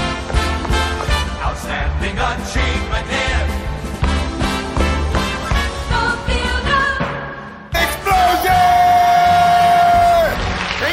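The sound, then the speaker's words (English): A loud crowd cheers and whoops at explosions in a dense, continuous roar, then after a brief cut a short, bright award jingle bursts in with a sustained high note over more cheering. “How do you feel about that jingle in this movie about terrorism? Touche. Cheering on explosions.”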